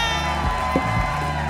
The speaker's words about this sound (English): Please give a huge round of applause to Josh Johnson!